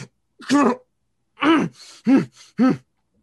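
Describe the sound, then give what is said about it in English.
A voice acts out the strained, pained breathing of a character hit in the chest by an arrow, trying to steel herself: four voiced groaning breaths in an uneven rhythm, separated by short breathy intakes, with no words spoken. “as you can see her trying to steel herself with her breathing.”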